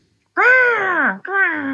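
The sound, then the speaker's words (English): Two loud crow caws in quick succession, a long drawn-out call followed by a shorter one, with nothing else around them. “Oh, I guess the crows can, the crows can take care of it. They can see.”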